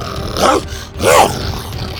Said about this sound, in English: Buck growled, pounced, and attacked at Bo's every command.